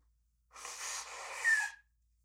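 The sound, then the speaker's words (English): A single nose blow: a breathy, hissing rush of air lasting about a second, swelling louder toward the end where a brief high whistle cuts through before it stops abruptly. “Okay, so you're going to sit there powerless to do anything but listen to me blow my nose.”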